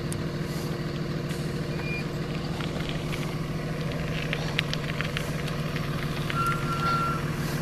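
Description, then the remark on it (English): A school bus picking up children for school on a warm morning in Garden City, Boise, idles with a steady low engine rumble while short electronic beeps sound a few times, including a longer tone near the end. “All the kids getting on the bus.”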